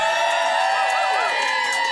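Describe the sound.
A large audience cheers and shouts together, a loud, sustained wall of overlapping voices with scattered whoops that holds steady for about two seconds, cheering on a request to see a man drink from a can of Foster's.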